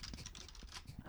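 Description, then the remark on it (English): A quick burst of typing on a computer keyboard that is not connected to anything, with rapid, uneven key clicks and clacks, heard alone with no talking. “Here's a keyboard. There you go. Not that kind of keyboard.”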